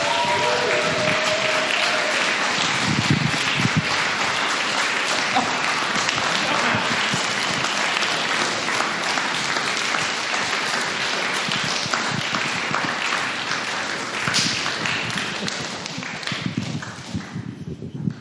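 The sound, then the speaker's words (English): A sustained round of applause from an audience for the next storyteller as he comes to the microphone, dense and steady clapping for several seconds before tapering off near the end. “So remember to keep that round of applause going until he gets the microphone.”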